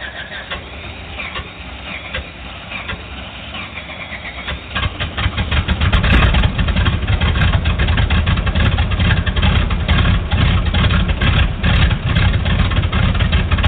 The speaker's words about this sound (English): REPA 23, you're cleared to start engines.